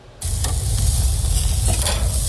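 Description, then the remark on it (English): Speedies meat sizzles loudly on a hot grill, a steady crackling hiss that starts abruptly and continues without pause, with no one speaking. “The sounds of sizzling Speedies. Delicious, nutritious Speedies.”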